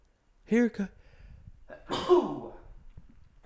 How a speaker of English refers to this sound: There might be a sneeze, too.